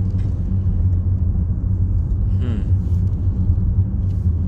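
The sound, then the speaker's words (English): A steady, droning car engine rumble fills the cabin as someone drives a car home, deep and continuous, with the low hum of the road underneath and no one speaking. “Driving my mum's car home.”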